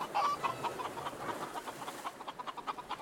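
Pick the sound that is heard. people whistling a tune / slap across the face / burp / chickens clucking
chickens clucking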